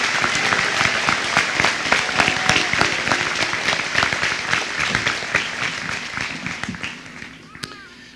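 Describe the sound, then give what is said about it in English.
A crowd applauds steadily for student speakers at a class of 2022 ceremony, dense overlapping claps forming a loud, continuous wash of sound that gradually thins and softens toward the end. “Another round of applause, please, for these fantastic student speakers.”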